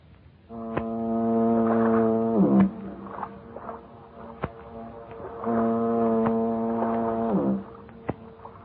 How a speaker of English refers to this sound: He gets to dreaming of his hometown, San Francisco, the Golden Gate, and that symphony of foghorns booming across the bay.